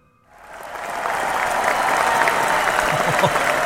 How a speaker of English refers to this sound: Well, they deserve that round of applause.